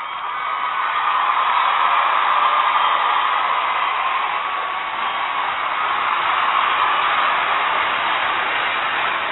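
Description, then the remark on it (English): A large crowd of fans cheers in a steady, dense roar that holds at a loud, even level for about nine seconds, with no single voice standing out. “That comment deserves fans cheering.”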